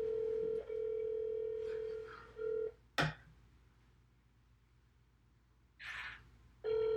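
A telephone ringback tone on a call rings twice: a steady, fairly loud electronic hum in long pulses separated by pauses, with a sharp click in the middle and a brief faint vocal sound near the end.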